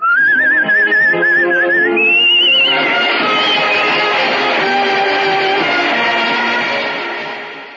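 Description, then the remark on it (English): A person whistles a song's melody as a short, warbling melodic phrase with vibrato for a couple of seconds before a full band swells in and plays on, fading out at the end. “How does it go? Well, it's... leave us no longer pretend... I better whistle it.”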